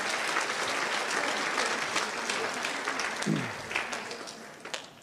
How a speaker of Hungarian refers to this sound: most megdolgoztattuk a dicséret csapatot, egy nagy tapsot egész biztosan megérdemelnek. Köszönjük szépen!